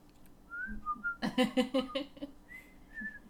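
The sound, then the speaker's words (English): A few thin, breathy whistled notes of the theme tune from The Andy Griffith Show, then a short run of rhythmic voiced syllables carrying the melody, before the faint, wavering whistling resumes. “Yeah, I can't whistle.”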